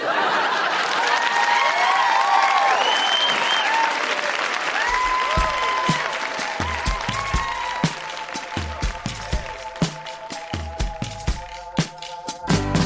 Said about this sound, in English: Huge round of applause for everybody who read tonight. So good.